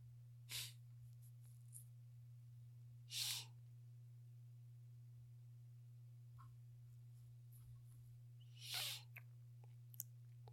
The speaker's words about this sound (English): Excuse me, guys. Got the sniffs.